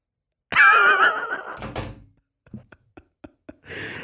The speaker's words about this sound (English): I mean, I just like dropped my phone after that.